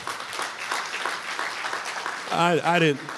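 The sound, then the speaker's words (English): An audience applauds with a dense, steady wash of clapping, and toward the end a voice rises over the applause with a few drawn-out, sing-song tones. “She really needed that applause, not me.”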